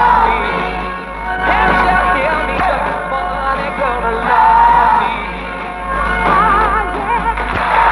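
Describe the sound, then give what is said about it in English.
A loud live audience cheers, whoops and yells continuously, the applause at the end of a live music recording, swelling and dipping throughout. “Because it sounds like a live recording, maybe. Because you can hear the applause at the end.”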